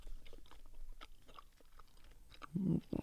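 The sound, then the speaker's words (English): Wet chewing noises of someone chewing a fruit roll-up, with soft smacking and clicks, irregular and continuous for a few seconds, ending in a couple of louder low thumps or muffled bursts. “Me chewing a fruit roll up.”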